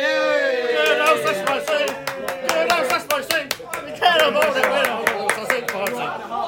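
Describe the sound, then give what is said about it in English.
A group of people whoop and cheer with raised voices while sharp, rapid, uneven hand claps run through the whole stretch, loud and sustained for several seconds, for a match day special pre-match build-up. “It's match day special. Cheer, everyone.”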